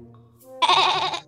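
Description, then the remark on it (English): A person imitates a goat, giving one loud, wavering bleat that lasts about half a second. It rises abruptly out of a quiet, low-humming background. “Then I, the goat, had to come on my boat and transport the cake along the lake.”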